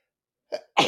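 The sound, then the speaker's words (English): A single sneeze: a brief, breathy catch followed by a sudden loud, harsh burst of air that fills the moment, with no talking around it. “Bless you.”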